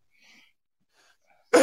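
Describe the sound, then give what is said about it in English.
After a stretch of near silence with a few faint breathy rustles, one sudden, loud, harsh cough bursts out right at the end; a chronic cough, not a COVID cough. “Please note that is not a COVID cough. That is not a COVID cough. That's a chronic cough.”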